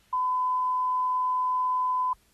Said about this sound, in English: But if you leave a message, baby, I'll get back to you as soon as possible. Wait for the woo and the beep.